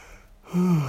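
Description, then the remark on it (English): A single breathy yawn with a low voiced groan that swells halfway through and trails off slightly downward in pitch. No speech alongside it. “Again, excuse me for yawning.”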